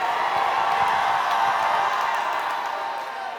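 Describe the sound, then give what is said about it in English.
A church audience shouts and cheers together in answer to a call to shout if they believe in the Lord, a loud, sustained roar of many voices, steady for a few seconds before easing slightly at the end, with scattered whoops and a few claps mixed in. “If you believe in the Lord, shout.”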